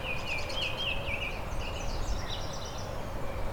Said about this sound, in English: Very high-pitched song. Kind of reminds me of black poll warblers, just not as weird sounding.